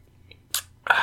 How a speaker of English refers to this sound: We have some Modelo Negra, which is I guess it's like a darker Mexican-style beer like Modelo. I've never had this one, so take a sip of it real quick.